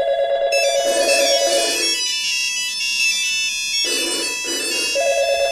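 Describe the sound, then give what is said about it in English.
An electronic telephone ringtone plays loudly and alone, a bright chiming melody of stacked tones that repeats in short phrases with a brief pause between bursts. “I think we're going to have to cut the phone calls off because of time here.”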